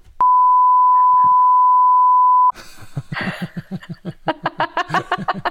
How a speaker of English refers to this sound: I'm glad we beeped that out.